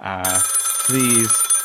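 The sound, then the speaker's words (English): A telephone rings in two short, buzzy bursts with a brief pause between them, loud, over a bright, shimmering metallic ring that carries through the gap. “Those phones just ring-a-ding-ding, as … used to say.”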